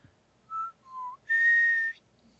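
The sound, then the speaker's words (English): A person whistles a short tune from the film Mac and Me: three clear notes, two mid-pitched, then a higher, longer held note. The whistling is fairly loud, with no talking. “Did you just do the whistle from Mac and Me?”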